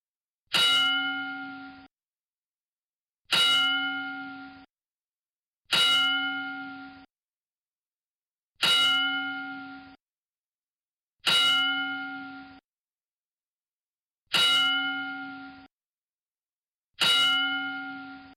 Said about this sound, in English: So we have those 2 losses this week, and you know what? We're going to pay tribute to them with a 10-bell salute.